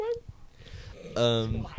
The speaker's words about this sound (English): Sometimes you get to see Dan's dog is barking, but don't mind that.